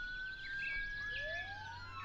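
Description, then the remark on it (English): Sirens wail, their rising and falling tones overlapping as they sweep steadily across the scene, with no voices present. “The sounds of sirens broke over Agent Mills' thoughts.”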